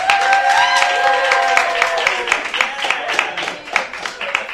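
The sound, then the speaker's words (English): A crowd claps steadily for several seconds, a dense, loud patter of hands with a few raised voices and whoops mixed in before it starts to thin out, as the audience welcomes a pianist being introduced. “Ladies and gentlemen, please give me a warm welcome round of applause”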